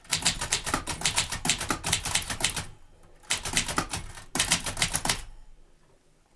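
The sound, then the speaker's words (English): Rapid mechanical clacking of vintage typewriter keys in loud bursts in a radio studio on the Ray Darcy Show, with a brief pause after a few seconds before the typing resumes in two more quick runs. “And on the Ray Darcy Show, the nostalgic sound of tapping keys.”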